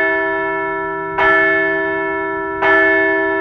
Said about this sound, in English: Let's ring the bell for the walk-off win.